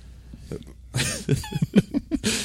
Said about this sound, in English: The way you project your coughs is like. I'm trying Godzilla. Not to shoot it directly into this mic. Yeah. So you don't have to hose it down with Lysol afterwards.